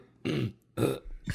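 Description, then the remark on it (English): Two loud, guttural burps in quick succession, followed by the start of a third, each a broad rumbling blast with no talking. “I thought that was all just …, and then somehow he hit that burp on cue.”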